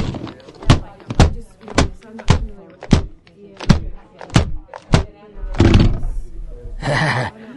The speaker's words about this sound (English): Oh, but first, I forgot my morning ritual of smashing my keyboard on the desktop.